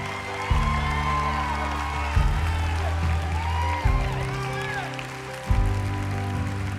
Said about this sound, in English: Come on, we're gonna keep clapping, because all of heaven's clapping. Heaven's rejoicing.